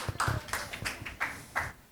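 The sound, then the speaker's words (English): Clapping rings out in a steady rhythm of about five or six sharp, crisp hand claps, fairly loud, with no talking over them, as an audience welcomes the first speakers, who will talk about falconry. “Let's have a round of applause for our first speakers.”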